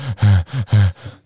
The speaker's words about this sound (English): Now I'm just breathing heavy.